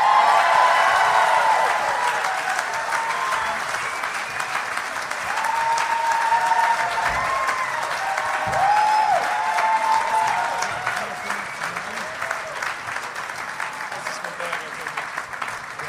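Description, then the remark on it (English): An audience of about 275 people at Parlor Live in Bellevue, Washington claps and cheers steadily as guests including Anthony Jeselnik and TJ Miller are welcomed to the stage, a dense wash of applause with scattered whoops and shouts rising above it, holding loud for the full stretch without easing off. “Real silent for a while after the clapping.”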